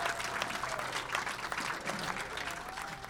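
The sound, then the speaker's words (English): Steady applause from a live audience for guests Ben Keating and Jordan Taylor, a dense wash of many hands clapping at once, sustained and fairly loud for a few seconds without pause. “Big round of applause.”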